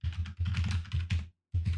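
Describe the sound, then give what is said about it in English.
Rapid typing on a computer keyboard, a dense clatter of keystrokes in quick bursts with a brief pause before the tapping resumes. No voices. “What are you typing in here?”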